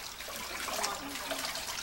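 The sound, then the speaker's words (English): Water splashes and sloshes steadily for a couple of seconds as a woman is immersed in water and lifted out during a baptism, with no talking over it. “In obedience to the command of our Lord and Savior Jesus Christ and upon a profession of her faith in him, we baptize this our sister in the name of the Father and the Son and the Holy Ghost.”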